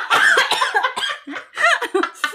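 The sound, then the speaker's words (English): A fairly loud fit of coughing: several raspy, partly voiced coughs come in quick uneven bursts over a couple of seconds, with no talking in between. “sorry, coughing because all of this passion.”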